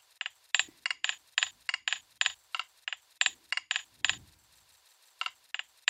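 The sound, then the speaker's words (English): Clinks and knocks from a microphone dropped while recording and clinking on things on the way down, chopped into a sample called Clink: a quick rhythmic run of about twenty sharp, bright metallic hits, briefly pausing before a few more strikes at the end. No one speaks. “So in our session here, we have a sample called Clink, also made out of sounds of me pretty much dropping my microphone and it clinking a little bit on things on the way down while I was recording.”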